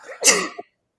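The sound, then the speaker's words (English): A single loud sneeze with a sharp breathy burst and a short trailing catch at the end, followed by silence. “God bless you. God bless you.”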